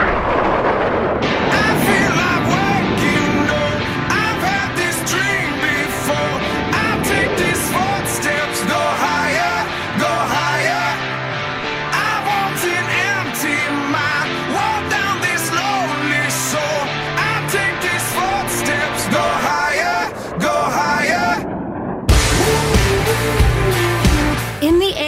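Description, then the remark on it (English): Jet engines running up for takeoff with the brakes released: a loud, steady roar with layered high whining tones that holds for about twenty-five seconds, shifting character briefly near the end. “Clear for takeoff. Check your parking brake off.”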